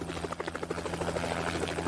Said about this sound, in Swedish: Helikopter kom och filmade.